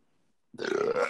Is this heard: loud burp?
yes